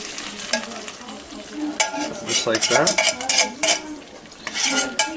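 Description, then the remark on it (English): The remaining coconut milk, stirred to a watery consistency, is poured into a hot pot of cooked onions and stirred, with a steady sizzle and scraping of a utensil against the pan; a voice speaks briefly over it. “All right, so once your onions have been cooked, you can go ahead and take the remainder of your coconut milk, stir it up so it becomes kind of a watery consistency, and you can just add that right in.”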